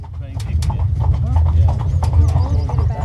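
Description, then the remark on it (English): Steady, rhythmic clip-clop of horse hooves on pavement as a horse and buggy rolls along in the Aran Islands, western Ireland, with a low rumbling of wheels underneath and faint voices in the background. “So I'm on a horse and buggy. Can we play it one more time? I just like hearing that.”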